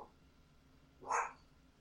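A dog gives one short, sharp bark midway through, moderately loud against a quiet background hum, with no voices around it.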